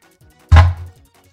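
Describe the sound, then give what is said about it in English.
A single heavy knife chop lands on a cutting board while onions are being chopped, a sharp, solid thud with a brief low ring before fading back to quiet. “So actually, I'm gonna start chopping up some of the onions.”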